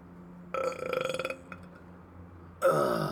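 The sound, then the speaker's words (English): A loud burp with a long, croaky rattle, followed after a short pause by a second burp that starts abruptly and runs to the end. “I feel like you're gonna burp.”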